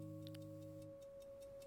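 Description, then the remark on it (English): A small clock on a dresser ticks in a quick, even rhythm, its light clicks soft, over a low steady hum. “Granny had left a small clock on the dresser.”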